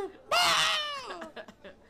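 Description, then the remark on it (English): A human voice imitates the scream of narwhals clashing their horns: one loud, shrill, strained cry lasting under a second that slides downward in pitch, trailing off into a few faint, breathy vocal fragments. “Narwhals. Except when they scream every time they hit each other.”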